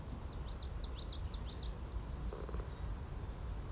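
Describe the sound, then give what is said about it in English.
A bird sings a quick run of high, repeated chirping notes for about a second and a half, fairly faint, over a steady breezy whoosh of tall cattails around a little footbridge near a marsh and marina, under blue skies with clouds. “Blue skies with clouds washing by. Sound of birdsong.”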